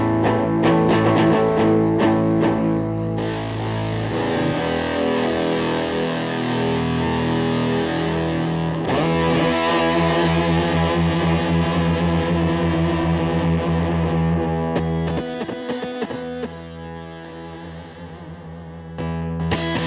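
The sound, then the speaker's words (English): A guitar played through an effect that makes it sound like an old keyboard synth, with loud, sustained, buzzy chords and held notes. Near the end it thins to a quieter stretch of picked notes. “It's like a synth. It's simulating like a keyboard, like an old keyboard.”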